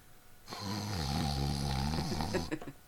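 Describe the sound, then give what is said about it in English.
A woman asleep in bed lets out a single long, loud snore for about two seconds, a harsh rattling, buzzing drone with no talking, set between short stretches of near silence. “Damn bitch is snoring again.”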